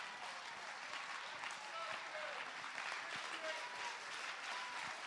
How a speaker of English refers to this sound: Oh, clap your hands and give him praise.